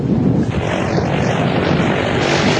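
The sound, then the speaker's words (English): A propeller tow plane in France, with a long rope attached to tow a glider, drones loudly and steadily: a dense low rumble with a constant buzzing roar and no pauses, with no voices. “This is the plane that's going to tow us.”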